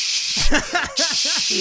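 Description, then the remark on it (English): A voice mimics the steady hiss of an espresso machine's steam wand, a breathy, continuous shush lasting about a second and a half, with bits of voiced sound mixed in. “So I am competing with music, people talking, but most of all, those gosh darn espresso machines.”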